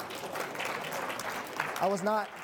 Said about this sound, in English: I was just asking for an amen, not a clap.